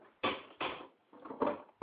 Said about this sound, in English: God, these fucking chairs are ridiculously loud.